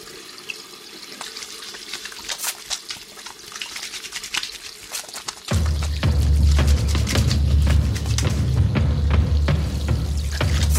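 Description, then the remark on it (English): Clinks and light splashes at a sink, then a faucet turns on and water runs steadily, a loud rushing stream with small clatters over it as someone washes their hands. “Next time you wash your hands, think about that.”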